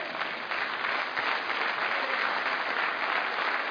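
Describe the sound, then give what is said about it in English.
Steady applause from a church audience for the young ladies, many hands clapping in a dense, even wash of sound that holds at the same loudness throughout, with no voices breaking through. “And I will give you a hand clap.”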